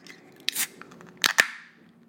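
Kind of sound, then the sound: food or drink, beer being opened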